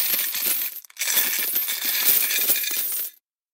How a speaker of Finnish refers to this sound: Jes, voisiko tähän niinku sellaista rahan kilinää vaan? Joo, hei, rahakilinä tästä sulle heti alkuun, kuule.